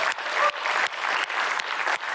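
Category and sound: crowd, audience applause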